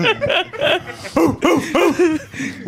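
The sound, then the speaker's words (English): A person imitates a barking guard dog, letting out a quick string of about half a dozen loud woofs in an uneven rhythm, with no other talking. “It's like a guard dog. Start barking.”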